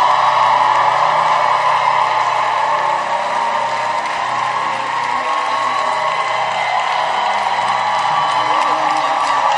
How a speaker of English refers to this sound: and give the Lord your loudest clap and shout of victory.